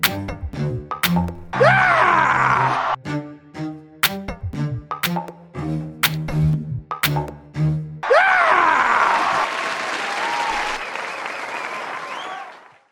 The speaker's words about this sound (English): Please, please hold your applause.